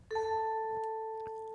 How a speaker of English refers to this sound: Apologies, that was the inaccuracy bell ringing. I need to just clear up or clarify a few things that I just said that were not exactly accurate.